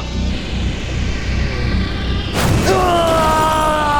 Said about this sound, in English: Oh my goodness! Aroma has just launched survey drones towards Spear! What will they do?